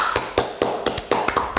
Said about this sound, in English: Double clap for that.